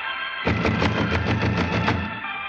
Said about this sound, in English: Someone is purposely not answering. Knock again, Holmes.